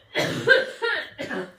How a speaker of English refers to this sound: had a coughing attack.